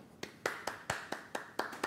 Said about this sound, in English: Remember, whenever we see mystery, we clap. We applaud because that means something's being revealed, right?